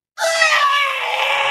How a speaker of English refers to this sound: And also shout out to the fucking baby doll I found. I had no idea that was in the game. Jesus. The baby doll, you can stomp it and it cries. It scream cries when you stomp it.